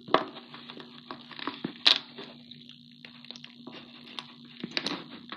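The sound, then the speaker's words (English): Expired crunchy slime containing broken fruit bead accessories being squeezed, with small bits cracking inside it, producing irregular crackles and crunches over a low steady hum, with a few louder pops; nobody speaks. “Okay, it's crunchy.”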